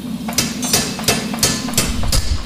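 A power hammer pounds hot metal in a steady, rapid rhythm, about seven heavy, sharp blows over a constant low mechanical drone, with no voices.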